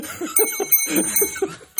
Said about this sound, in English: You get the janky bell for that one. He's a janky bell. Janky bell.